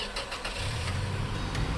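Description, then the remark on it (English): A car engine cranks with a few quick rhythmic turns, then catches and settles into a steady low rumble, with no voices. “We were out of the door and inside of the car and moving in under a minute.”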